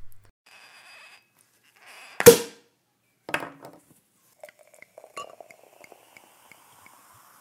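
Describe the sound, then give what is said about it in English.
A sharp, bright glass clink rings out, followed a second later by a softer knock. Then come faint scattered trickling and fizzing sounds of a drink being poured into a glass, with no talking. “So let's pour a glass and begin.”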